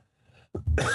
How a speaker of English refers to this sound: Oh, coughing myself to death.